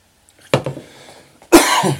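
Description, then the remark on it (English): Two forceful coughs, the second louder and harsher than the first, with a brief pause between them and no talking. “And a cough for good measure to make sure you're awake this evening.”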